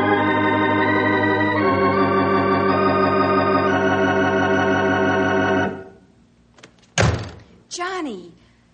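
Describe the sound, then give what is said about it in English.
Sustained organ-like music plays and fades out, then a door slams shut with one loud, sharp bang, quickly followed by a voice starting to speak. “You 100 times not to slam that door.”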